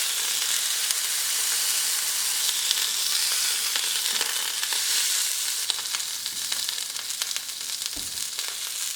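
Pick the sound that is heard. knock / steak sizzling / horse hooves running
steak sizzling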